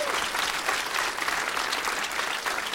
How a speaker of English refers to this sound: And let's have a round of applause for the owner of this great comedy club, The Comedy Attic.